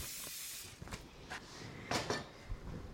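A few short, breathy hisses of cooking spray hitting a heated pot, quiet, spaced unevenly over a low steady background with no one talking.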